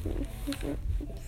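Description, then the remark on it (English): A loud, deep engine roar rumbles steadily for a moment, heavy low-end growl pulsing slightly as a very large SUV revs and drives off. “The engine sound shook the ground.”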